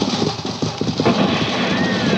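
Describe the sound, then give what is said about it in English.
Stagecoach horses gallop hard, their hooves pounding in a rapid, steady, loud rhythm over a busy rumbling background with indistinct voices. “You drive them horses.”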